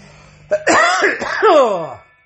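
A loud tickly cough: a quick sharp catch, then a raspy, drawn-out hacking that trails off over about a second and a half, with no talking.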